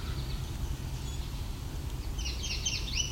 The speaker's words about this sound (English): That's the yellow warbler.